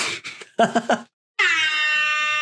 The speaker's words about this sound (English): Did you just play a fucking air horn? Yeah, because you said it.